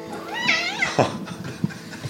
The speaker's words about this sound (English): You've got a loud meow.